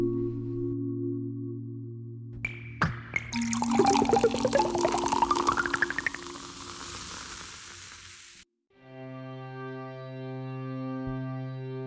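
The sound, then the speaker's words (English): A sharp crack, then a fizzy drink poured, its bubbly hiss crackling loudly for several seconds as the pour rises in pitch, over a steady humming musical drone that continues afterward. “The story of how those bubbles became a thing starts when Suzanne fell in love with a machine.”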